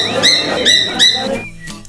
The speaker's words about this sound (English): Bird. You're right.